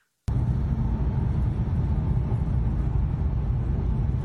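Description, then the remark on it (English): After a moment of silence, a sudden explosion bursts in at a burning manufacturing plant, followed by a loud, deep, continuous roaring rumble that holds steady without letting up. No one speaks. “Check out this explosion.”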